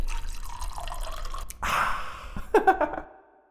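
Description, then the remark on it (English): A drink is poured into a glass: a steady splashing stream, then a brief surge and a few bright, gurgling glugs before it trails off. No one speaks. “pour me another one.”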